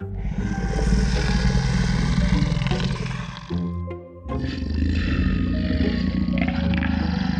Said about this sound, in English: Before either of us could fall asleep, we both heard the fierce growl.